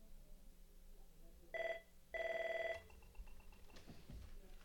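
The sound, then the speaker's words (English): A telephone rings twice, a short electronic trill followed by a longer one, clear over faint background noise. “This phone never rings.”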